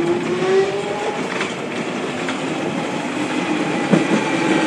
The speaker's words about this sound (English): And so there are platforms here, but they generally don't get used. So that's why there's a lot of trains speeding by here as well as the ones that are stopping.